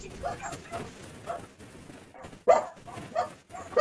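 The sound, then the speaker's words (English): A dog barks in a few sharp, loud bursts after a quieter stretch with muffled background voice sounds. “The hell are you barking at?”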